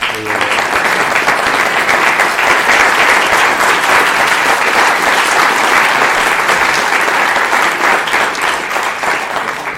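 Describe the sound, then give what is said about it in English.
An audience clapping steadily for people standing up to take a bow, a dense, loud wash of applause that holds for the whole stretch and tapers slightly at the end, with no one speaking over it. “Why don't you guys stand up and take a bow and let us applaud you.”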